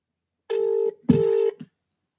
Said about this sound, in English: And it's ringing. I was going to say it's calling.